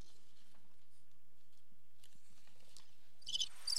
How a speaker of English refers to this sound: Crickets. It was so quiet.